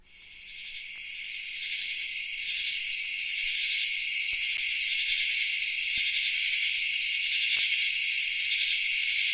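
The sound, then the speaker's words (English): A dense, continuous chorus of crickets chirping, played by an Alexa device through the Sleep Sounds skill, a steady high-pitched trill that swells in over the first second and then holds loud and unbroken, with no voices. “Play crickets.”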